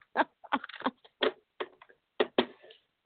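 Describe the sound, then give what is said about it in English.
A deck of cards being shuffled before cards are drawn for a reading, heard as a quick series of crisp, papery bursts in an uneven rhythm, each brief rustle-and-snap separated by short pauses, with no voices. “I'm going to give them a good shuffle because I actually was playing with them, if that's what you would say, before I started the show.”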